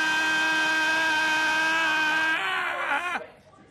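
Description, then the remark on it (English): Someone's phone goes off with an air-horn ringtone: one loud, buzzy, steady tone held for over two seconds, then it wobbles, sags downward in pitch and cuts out abruptly. “Yours is an air horn.”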